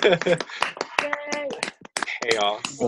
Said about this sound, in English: Nope, there we go. Wait. People just clap. There we go. Yay. Yay.